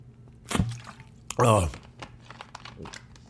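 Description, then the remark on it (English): Someone sips water: a quick wet slurp, then a louder, longer swallowing gulp with a breathy edge, followed by quiet room tone. “But first, before I get into any of this, before I dabble in any of this, man, you already know I got my co-host with me. Water in the building, you know.”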